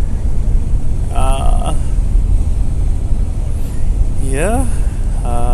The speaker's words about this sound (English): Weather is humid, but not so bad. Breathable. It's hot, definitely hot on the bus, but there's air conditioner. But when you turn on the air conditioner, it's too cold.